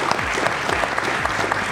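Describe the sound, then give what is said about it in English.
A crowd claps steadily for a panel, a dense wash of many hands applauding at once, sustained throughout the short stretch with no voices standing out. “A big, big round of applause to our incredible panel, doing incredible work tirelessly.”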